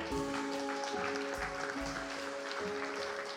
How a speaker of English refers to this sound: Oh, come on. You can give a little bit better clap than that. Come on.